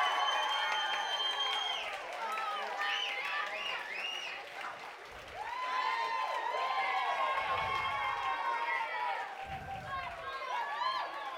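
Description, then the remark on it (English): A live crowd at Mister's cheers and applauds continuously as former NFL player Isaiah McKenzie is brought on, with many voices shouting and whooping over steady clapping. The sound stays loud and dense, swelling in waves throughout. “What about this crowd, Isaiah?”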